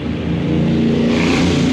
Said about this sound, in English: Wait for this motorcycle to go by.